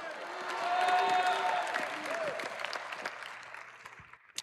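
A church audience bursts into sustained clapping mixed with shouts and cheering voices, giving the Lord a shout at the preacher's urging, swelling early then gradually thinning out over a few seconds.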